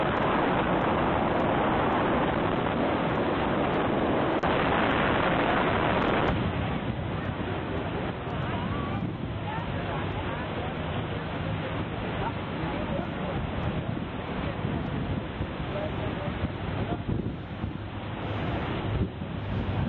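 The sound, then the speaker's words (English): Loud, constant rush of wind buffeting the microphone over churning water and the droning engine of a boat with two 400-horsepower motors, riding on the Iguazu River in Brazil, a steady roar for the whole stretch with faint voices buried underneath. “Here's a couple of videos to give you a sense of what it's like riding on the Iguazu River.”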